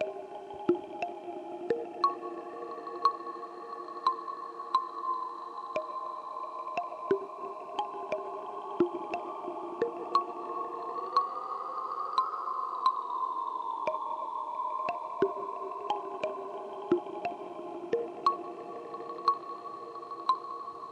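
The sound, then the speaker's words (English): A sustained, layered synth drone played through two stacked Earthquaker Devices ghostly reverb pedals, one the Transmisser, drenched in washy reverb, its tones swelling and bending in pitch midway, with faint scattered clicks over the steady shimmering haze and no voices. “Now for a little extra character, I've also got the Transmisser from Earthquaker Devices, which is another ghostly reverb, but quite a bit different. Let's just stack those on top of each other.”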